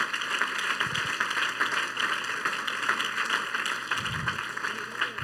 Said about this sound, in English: Clap your hands on the Lord.